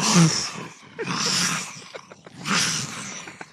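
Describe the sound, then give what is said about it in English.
A person in a radio studio imitates thunder with their voice as a sound effect, producing three breathy, rumbling bursts of noise separated by short pauses and crackling clicks, moderately loud. “Thunder! Thunder outside!”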